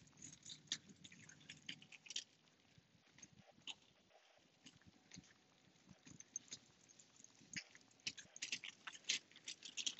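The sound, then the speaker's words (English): Light drizzle pattering steadily outdoors, a dense scatter of soft irregular ticks and taps, continuing for the whole stretch with no voices. “So we got a little bit of rain out here.”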